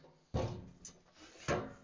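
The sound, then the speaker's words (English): One more wooden chair is set down up front on a hard floor, making two solid thuds about a second apart, with a quiet scrape between them and no voices. “And you can put one more up here.”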